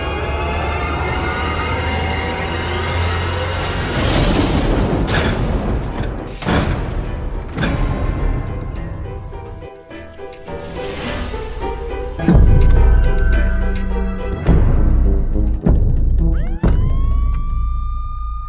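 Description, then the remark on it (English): Heavy, irregular thumps of a turkey banging against a front door, very loud, repeating every second or two over a background of wailing, siren-like tones. “very loud thumping noises against my front door.”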